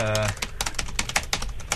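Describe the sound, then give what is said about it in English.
Rapid, uneven clicking of keys on a computer keyboard as a number is typed in, a dozen or so sharp taps, preceded by a brief tonal hum at the start. “OK, I'm just typing in 1, because I haven't got my iPod here”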